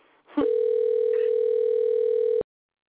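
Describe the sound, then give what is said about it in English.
A loud, steady electronic telephone ringing tone of an outgoing phone call sounds once, holding an unbroken pitch for about two seconds before cutting off, preceded by a brief rustle and with no one talking over it. “It's okay, I'm ringing Geoff at the same time.”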